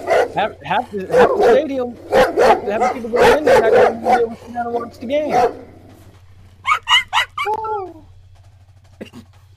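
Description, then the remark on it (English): A dog barks rapidly and excitedly in loud bursts for several seconds, then after a brief pause lets out a few short, higher yips and whines before going quiet. “That's what happened when the dog get too close, and hit the pocket.”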